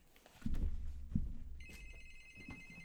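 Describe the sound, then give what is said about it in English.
A couple of dull thumps, then an electronic doorbell starts ringing with a steady, high, buzzy tone that holds to the end. It sounds fairly clear, with no talking. “Hold on, somebody ringing my bell.”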